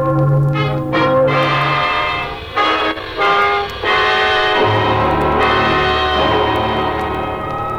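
Church wedding bells peal loudly and continuously on a Sunday morning, several overlapping strikes ringing out with long, shimmering tones that blend into a dense, resonant clangor without any voices.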